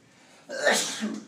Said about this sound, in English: Bless you.